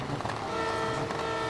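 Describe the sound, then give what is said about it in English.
Ten trucks rev their engines together before a half-mile race at a local airstrip in Texas, rolling coal out of the exhaust, in a loud, continuous roar with steady droning tones and rising surges of power layered over a dense rumble. No one speaks. “Now, this is a race of 10 trucks. They're all revving up at the moment.”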